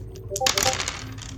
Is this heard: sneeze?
no